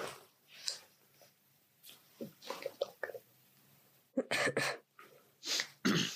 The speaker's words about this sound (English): Sorry, coughing over here.